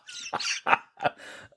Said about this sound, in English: is now muted so he can cough to death because he wasn't expecting that.